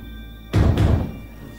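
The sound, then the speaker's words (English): A daughter bangs on metal pipes: two heavy bangs land in quick succession, loud, with a dull booming ring that fades within about half a second. A low steady hum sits underneath. “The daughter starts banging on some pipes.”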